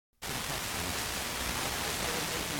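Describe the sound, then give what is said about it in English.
A steady hiss of radio static cuts in abruptly after a brief silence and holds at an even, fairly loud level throughout, with no voices. “Oh, so that's why it kept going to static.”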